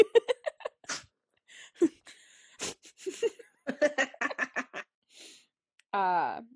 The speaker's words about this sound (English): Dog sneeze. You got the Rona? Don't sneeze on me, you little gremlin. You done?